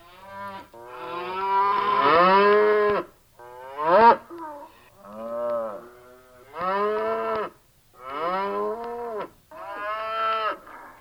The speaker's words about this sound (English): And here's one of them. That's a cow.